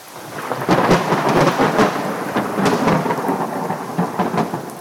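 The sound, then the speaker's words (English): Steady, dense rain pours down at a park on a cold day with a constant hiss and patter, while low rumbling and sharp crackling bursts suggest a storm. No voices are present. “Back at the park, it was cold and started raining.”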